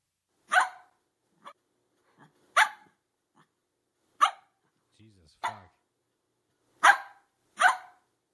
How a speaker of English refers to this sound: Sorry, I don't know that, but I do have a skill you might like. It's called bark like a dog. Wanna try it? Sure. Okay, here's bark like a dog.